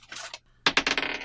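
Dice are rolled for a wisdom throw: they rattle briefly in a hand, pause, then clatter onto a hard surface with a sharp burst of quick, bright clicks that bounce and fade. No voices are heard.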